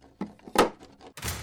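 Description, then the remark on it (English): A heavy safe door slams shut with a loud, solid thunk, preceded by a couple of softer knocks and followed by a brief rattling clatter, after something is thrown inside the safe. “May I burn in hell if I ever open the door of that safe again.”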